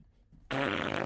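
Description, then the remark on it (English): A voice imitates a loud, buzzy fart, a sudden raspberry-like blast that starts after a brief quiet moment and holds steady at full volume. “He farted so loud, they're going to hear us.”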